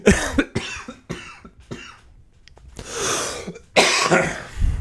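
A person coughs repeatedly at close range, a series of sharp, harsh bursts in the first two seconds, then two longer, heavier, wheezy coughing fits. No one speaks.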